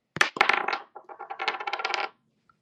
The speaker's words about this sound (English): You're going to roll a dice. I have them numbered.